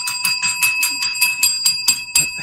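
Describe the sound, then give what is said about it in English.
A small handbell rings rapidly and insistently in an office, about ten bright clanging strikes in quick succession, fairly loud, with no voices over it. “That man got the bell.”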